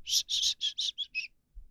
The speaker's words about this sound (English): What do you do when you're fishing all day? I whistle.